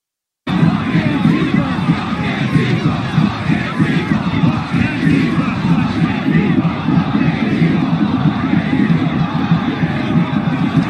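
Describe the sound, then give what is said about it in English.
A large crowd chanting "F Antifa" and shouting together, a loud, dense wall of many voices that starts abruptly and keeps going steadily for about ten seconds without a break. “Now people are saying F Antifa, F Antifa, they're actually chanting it.”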